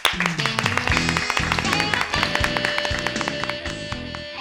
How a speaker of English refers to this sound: I think this vision of yours deserves an applause.